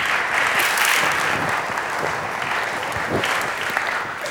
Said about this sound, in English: I think we could give them a little round of applause for that. Come on.